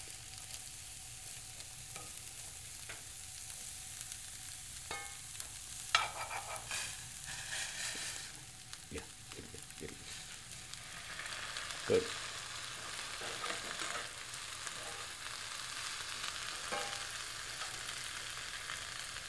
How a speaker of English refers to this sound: Once the cabbage begins to cook, then it's time to add the powdered spices.